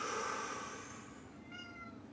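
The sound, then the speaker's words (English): A cat meows, a drawn-out, fairly loud cry that fades, followed by a shorter second meow, with no talking. “Even the kitty doesn't know what happened.”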